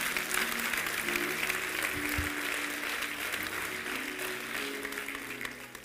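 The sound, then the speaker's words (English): A church audience applauds steadily for several seconds to welcome visitors, a dense wash of many hands clapping at a constant, fairly loud level, with faint low tones humming underneath. “Let's give them a hand clap for being here.”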